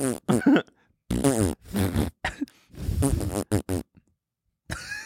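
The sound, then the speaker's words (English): Someone imitates a fart noise with the mouth, blowing a run of wet, buzzy mouth farts, several bursts of different lengths in quick succession, fairly loud, with short pauses between them. “Try to make the noise. I'm trying to nail the tone.”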